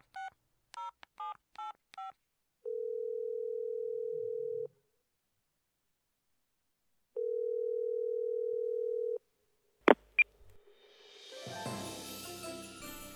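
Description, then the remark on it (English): A quick run of touch-tone dialing beeps, then two long, steady ringback tones separated by a pause, ending in sharp clicks and a burst of line noise as a phone call to a hotline picks up. “So I'm going to play this phone call.”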